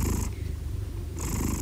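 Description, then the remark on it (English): A domestic cat, one of two pet cats named Calvin and Hobbs, purrs with a steady low rumbling vibration and a soft airy rasp that fades midway and returns as the breath cycles. No one speaks. “When I have bad insomnia, their purrs are pretty much one of the only things that can lull me to sleep.”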